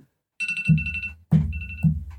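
An iPhone alarm rings on its own, a bright electronic melody of bell-like tones over a bouncy low beat, repeating in short phrases roughly every half second.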